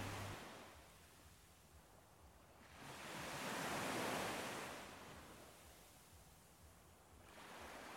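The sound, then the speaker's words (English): Ocean waves wash onto the shore of the Lido in Venice, a broad hiss of surf swelling to a peak mid-clip and easing back before another surge begins. Continuous, with no voices. “Edward and Sienna enjoy a private evening looking out on the waves of the shores of the Lido.”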